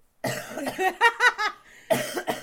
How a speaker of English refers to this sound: You done coughing?